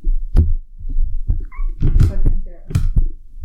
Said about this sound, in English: Fucking cat.